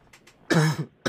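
A single loud, close-up cough blasts straight into the microphone, harsh and raspy with a throaty rumble, preceded by a couple of faint breathy puffs and followed by another sharp onset.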